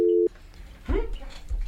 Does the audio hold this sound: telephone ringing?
yes